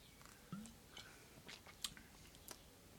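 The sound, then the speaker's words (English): Someone takes a quiet sip of a Canadian cucumber-infused ale, Steam Killer Cucumber Ale: a handful of soft, wet mouth clicks and small swallows spread over a few seconds, with no talking. “So I'm just going to have a sip to the mouth.”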